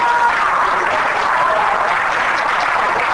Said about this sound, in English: So greater is coming. Oh, somebody give him a hand clap. Give him a hand clap.